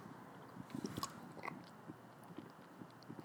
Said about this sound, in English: But the whole point of me even talking about this was I bought cucumber lime thinking that it was going to be tasty. And quite frankly, let me take another sip real quick.